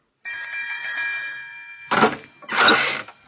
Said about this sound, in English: Now, this must be the doorbell. Here goes.